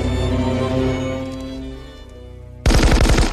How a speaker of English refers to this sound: They walk out and there's a pause and we do not see what happens. And we cut back to John hearing the gunfire.